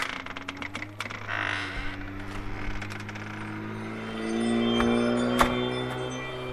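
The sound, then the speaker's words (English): A home security system chime from a Ring doorbell sounds as the outer door opens, with steady tones ringing over clicks and rattles from the door mechanism. No one speaks. “Now, the chime that you heard was my security system.”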